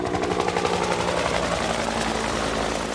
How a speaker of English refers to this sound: Yes, it came by helicopter. Why did it do that?